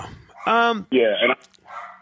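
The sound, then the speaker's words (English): Dogs bark twice in quick succession, loud, each bark sustained and strained, followed by a softer, shorter yelp-like sound trailing off at the end. “Yeah, get the dogs right”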